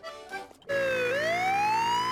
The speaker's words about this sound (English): Oh, look! An ambulance!